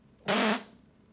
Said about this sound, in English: Like, you better get it. If you're going to fart mid-lift, you better fucking get it, dude.